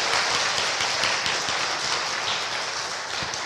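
A crowd applauds steadily, a dense wash of many overlapping claps holding an even, fairly loud level throughout with no voices on top.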